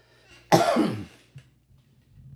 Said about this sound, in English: I got a cough again.